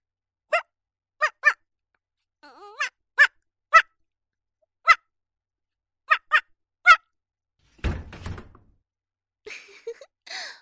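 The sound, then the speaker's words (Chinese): A person's voice imitates a female dog barking: a series of short, sharp yelps in uneven bursts. Then comes a brief clattering thud, and a few faint whines trail off at the end. “聪明吧，学母狗叫很像是吧，你家主人都被我骗过了，以为是条骚母狗进来了呢。”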